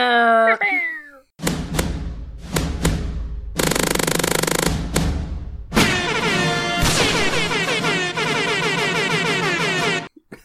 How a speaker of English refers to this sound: because you're editing, can you put some air horns in the background for me?